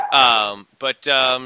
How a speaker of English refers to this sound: As your dog is saying hello in the background. Yeah, sorry about that. Not a problem.